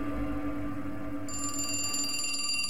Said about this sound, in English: Suddenly the phone rang. My mother answered it.